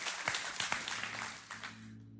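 A round of hand clapping, a dense patter of many hands applauding together at a fairly soft level for about two seconds before tapering off, with a low steady hum underneath.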